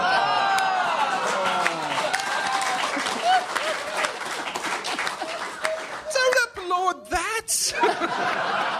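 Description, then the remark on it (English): An audience applauds a joke with dense, steady clapping mixed with laughter and excited voices; the clapping thins toward the end as a few louder voices break through. “I don't think they're applauding the joke as how quickly I zinged it out there.”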